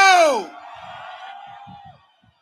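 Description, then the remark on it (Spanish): A crowd lets out a loud shout that swoops downward in pitch, then holds a steady, sustained yell that slowly fades out after about two seconds. The crowd shouts when asked to by everyone who loves and respects the United States of America. “Señores, yo quiero que todo el mundo que le guste, que ama y respete el United States of America, que dé un grito.”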